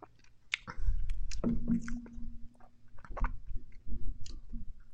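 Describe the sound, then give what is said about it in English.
Someone drinks White Blackbird beer: a series of wet, irregular gulps and swallows with small lip smacks and clicks, moderately loud, and no talking. “So let's turn up the White Blackbird and see what happens.”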